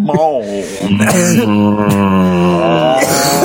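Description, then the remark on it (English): A man's voice imitates a cow, holding one long, low, moaning moo for about three seconds with a slight waver in pitch, loud and steady, with no other talking. “Not the sexiest mooing I've ever heard, but close.”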